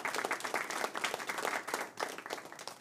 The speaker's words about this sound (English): I didn't think it would ever quit. Well, we have clapping.